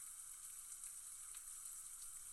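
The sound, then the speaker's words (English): A 7.1% beer poured into a small plastic cup, heard as a soft, steady fizzing hiss that runs unbroken for a couple of seconds, fairly quiet, with no voices. “Let's pour a little bit of that one out, see what it looks like in our trusty little plastic cup here.”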